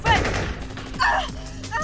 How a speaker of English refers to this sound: The thunderous shots of the twin pistols shattered the air and allowed the heiress opportunity enough to finally struggle past her would-be captors and start up the stairwell.